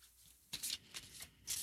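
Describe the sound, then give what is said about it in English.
A deck of cards being shuffled before one card is drawn, with a few quick riffling bursts of crisp, papery flutter separated by short pauses, no voices. “So the list goes on, but I'm going to pull one now for all of you listening. Give a little shuffle.”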